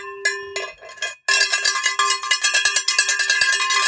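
A small metal beer bell, labelled 'ring for beer', rings out a couple of times, then is shaken into rapid, continuous clanging with bright, high overtones. No voices are heard.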